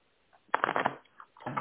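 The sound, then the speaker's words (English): A deck of cards being shuffled for a card reading: a quick riffle of crisp, papery flutters followed by a short pause and another brief burst of shuffling, with no voices. “Let's go to the cards and see what comes out.”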